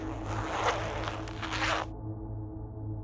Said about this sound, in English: But I still remember unzipping the bag, and it was a huge zipper, so it was really loud, and you heard these zippers all going throughout the room.